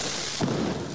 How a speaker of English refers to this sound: shooting what looks like to be Roman candles at each other